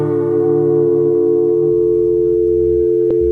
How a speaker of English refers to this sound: We'll call you up on your telephone. That dial tone, though.